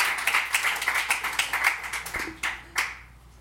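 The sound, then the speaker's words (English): An audience at a comedy competition show claps in a steady patter of many hands, strong at first, then thinning to a few scattered claps before fading out. “It's all clap for me.”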